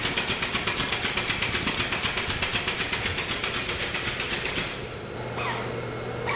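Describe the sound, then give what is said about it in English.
A bottling machine pumping bourbon into bottles clatters in a fast, steady mechanical rhythm for several seconds, then the clacking stops and a lower motor hum with a faint steady whine carries on. “Then stacked on the bottling machine, which pumps them full of brown liquid.”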